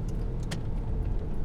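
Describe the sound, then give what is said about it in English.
Steady low road rumble from inside a moving car, constant, with a brief faint clink or rattle midway through. No one speaks. “You know, right now I happen to be driving”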